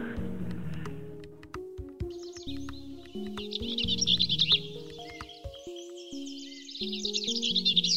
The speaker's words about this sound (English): I hear it calling. I'm walking toward it now. I'm in the wetlands portion right next to the railroad tracks. I can hear it. This is so cool. And I got eyes on it. There we are, our buddy, Lise Bell's vireo.